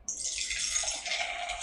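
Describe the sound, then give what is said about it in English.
Beer pours steadily into a glass in a studio, a continuous fizzy, splashing rush that starts abruptly and runs without pause for under two seconds, with no voices. “Hang on, sorry, I gotta pour one.”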